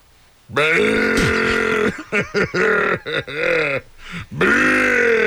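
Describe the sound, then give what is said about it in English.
A human voice imitates a camel's grunt: a long, loud, guttural rumbling groan followed by a string of shorter choppy grunts and a final drawn-out bellow, with no other talk. “How about a camel?”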